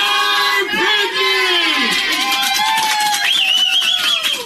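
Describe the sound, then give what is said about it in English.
Staff at a fertility doctor's office in Irvine, California erupt in loud, overlapping celebratory yells and whoops as the doctor phones a patient with good news, voices rising and sliding in pitch, sustained cheering for several seconds with no pause. “He calls each patient on the phone, and everyone in the office yells, and here, I'll play this clip for you.”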